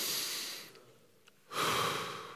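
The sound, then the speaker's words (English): A deep, audible breath is drawn in by a group together, held for a brief pause, then let out in a long, airy exhale, fairly loud, with no talking. “You're supposed to take about, anybody knows, you're supposed to take about 5 to 6 deep breaths every day.”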